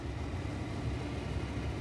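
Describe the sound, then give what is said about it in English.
A bathroom exhaust fan, recorded with a phone held up to it, runs on its medium setting, giving a steady, even whoosh with a low rumbling hum underneath. The level holds constant throughout, with no talking. “Holding my phone up to our bathroom exhaust fan, which finally got sorted today.”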